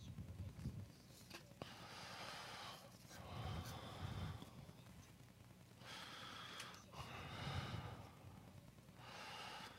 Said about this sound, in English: I can hear you. They can hear breathing.